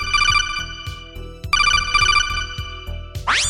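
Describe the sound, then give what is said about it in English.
A loud electronic phone ringtone chirps in two trilling bursts separated by a short pause, followed by a quick rising synthetic sweep at the end, as a listener call comes in on the phones. No voices are heard. “Let's go to the phones and take a listener call.”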